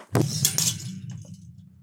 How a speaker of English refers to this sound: What was that? Wait, I didn't knock you unconscious. I punched my microphone really hard.